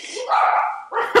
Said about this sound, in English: Now the dogs have started barking. Hold on.